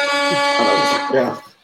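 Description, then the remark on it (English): A loud, sustained air horn blast with a steady, buzzy, harmonically rich tone holds for over a second, overlapped by voice-like sounds, then cuts off abruptly. “It was a good time for the air horn.”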